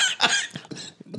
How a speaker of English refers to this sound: See, here you go with that cough again.